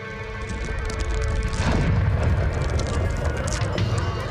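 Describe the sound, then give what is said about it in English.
A ship slams into a dock at the end of the wall with a deep, booming crash that rolls into a sustained, heavy rumble and grinding for several seconds, loud throughout, with a faint murmur of voices beneath. “Look, at the end of the wall, that ship crashed into the dock.”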